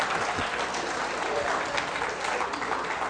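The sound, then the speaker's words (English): A crowd applauds steadily, a dense wash of many hands clapping at an even, sustained level for a few seconds with no voices standing out. “Listen, don't clap too hard because I'm going to say something else you're not going to like in a minute.”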